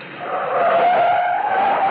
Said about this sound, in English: Like the night I came staggering out of Pier No Place, a joint on Sunset Strip, the car jock gunned my old sports car up to the curb.